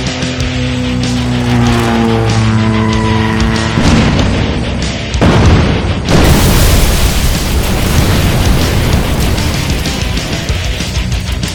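Loud roaring monster truck engines rev with a rising whine in an arena, then give way to a chaotic barrage of crashing, booming impacts, skidding and grinding noise, dense, with no talking.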